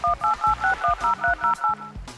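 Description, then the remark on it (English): A quick run of about ten two-tone telephone keypad beeps, evenly spaced, each short tone pressed in steady rhythm with no voices, dialed on a shell-shaped phone in the rocks at a beach. “We've arrived at the beach near our barn, and now I'm just going to pick up this secret shell-shaped phone over here in the rocks.”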